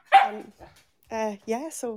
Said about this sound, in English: Stop barking.